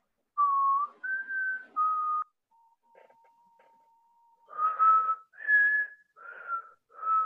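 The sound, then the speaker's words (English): Someone whistles a short tune of clear, sustained notes, breaking off briefly with a thin steady tone before resuming with several more breathy whistled notes, fairly loud. “Not good at whistling.”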